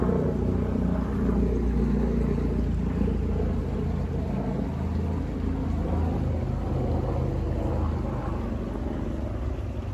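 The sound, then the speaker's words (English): A helicopter drones loudly overhead, a steady, heavy low-pitched rumble that holds for the whole stretch without fading. No one speaks. “Hold on, let me wait for this helicopter.”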